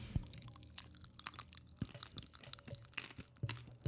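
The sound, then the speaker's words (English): Crunchy chewing on hard white pills, with irregular crackling bites and grinding, fairly quiet and without any talking. “Are you chewing on them?”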